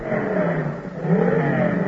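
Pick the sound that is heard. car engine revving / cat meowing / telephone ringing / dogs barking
car engine revving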